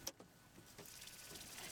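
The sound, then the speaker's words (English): A car button is pressed with a sharp, quiet click, followed by a faint, steady mechanical whir and a soft second click. No one speaks. “He just pushed the button on his car.”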